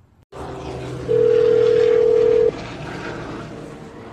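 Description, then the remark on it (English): A steady, loud telephone tone, as a call is placed to a zoo in California, holds for about a second and a half over a constant low hum and background noise, then cuts off, leaving the hum running. “So here's the phone call prank.”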